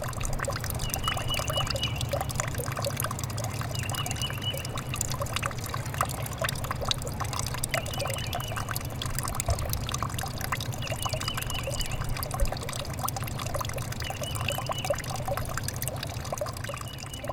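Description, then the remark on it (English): Steady water pouring from a drain pipe into a partly frozen creek on the Indiana University campus in Bloomington, a continuous splashing trickle with a low rushing undertone, unbroken for the whole stretch and with no voices. “You've been listening to a drain pipe emptying into a partially frozen creek on the campus of Indiana University, Bloomington.”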